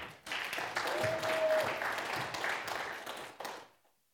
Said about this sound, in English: So if you guys could come up here and maybe give them just a round of applause.